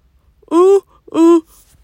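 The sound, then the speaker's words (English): Two short, voiced yawns in close succession, each a breathy intake swelling into a moaning tone, loud with quiet between them and no speech. “Sorry, I keep yawning.”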